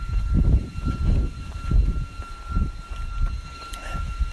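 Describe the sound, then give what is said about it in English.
Leaf blowers run outdoors on a cool, breezy, sunny day of about 61 to 62 degrees, as a steady mechanical drone, with a thin, constant high whine over a rough, pulsing low rumble that swells and dips every half second or so. “You can hear all the leaf blowers going.”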